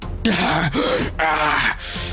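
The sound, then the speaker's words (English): A strained voice of a wounded figure, struck through the chest, gasps and wheezes in four breathy bursts, each a rough intake with a groaning, voiced edge, coming one after another with brief pauses between. “You do see a crack beginning to form along this red gemstone in his middle, and you hear him kind of like gasp and wheeze.”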